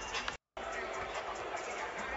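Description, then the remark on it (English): A large arena crowd boos Ben Simmons during his pregame warm-up in a steady, sustained roar of many voices, broken by a brief moment of silence near the start before the booing resumes at the same level. “They were into it at the beginning, booing Ben Simmons.”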